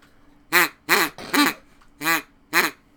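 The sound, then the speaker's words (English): A duck call blown in a series of five loud, nasal quacks, each short and evenly spaced with brief pauses between, with no talking. “It's a duck call.”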